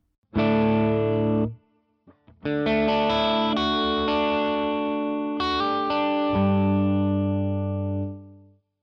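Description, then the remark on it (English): An electric guitar played through a foot-operated effects pedal that is switched on, loud overdriven chords ringing out, a brief pause with a few muted picks, then more sustained, shimmering chords that fade at the end. “So here it is with it on.”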